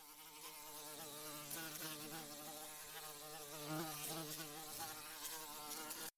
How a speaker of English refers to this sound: What's buzzing? It's the bug of the month